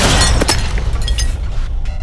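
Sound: explosion sound effect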